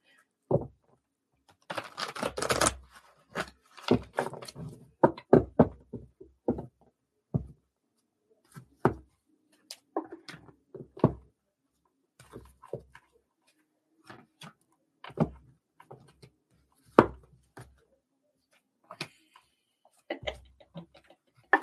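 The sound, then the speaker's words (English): A deck of cards being shuffled a little away from the microphone during a live-stream card reading: a dense riffling burst near the start, then scattered crisp snaps, taps and short riffles with brief pauses between them, and no talking. “And you guys can listen to me shuffle for a minute. I'm trying to do it a little away from my microphone so it's not too loud.”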